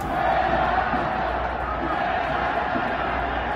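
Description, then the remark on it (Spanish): A large stadium crowd chants "fuera Tata" in unison against coach Gerardo Martino, a dense, steady roar of many voices holding a sustained mid-pitched tone, loud and unbroken throughout. “¿Qué ha hecho Gerardo Martino para evitar este grito?”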